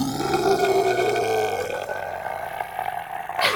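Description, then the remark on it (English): A voice imitates a deep, guttural creature roar, one sustained growling bellow lasting a few seconds, loud, with no other talking. “It's going to let out a guttural roar.”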